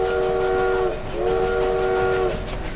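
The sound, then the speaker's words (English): A train whistle sounds in two long, steady blasts, the second following a brief dip, over the continuous loud rumble of a moving train. “Goro steered the space train into the mirror ball.”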